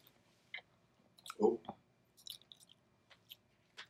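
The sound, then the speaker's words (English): Wet chewing sounds with a few soft, squishy bites and smacks, irregular and fairly quiet, as someone eats chicken. “This one chicken's good.”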